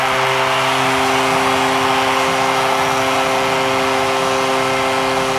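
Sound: arena crowd roaring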